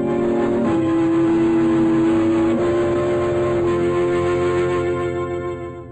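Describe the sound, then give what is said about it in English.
A car engine hums steadily, its pitch shifting slightly partway through as it revs, then the sound begins to fade away toward the end. No one speaks. “Load the rest in the car.”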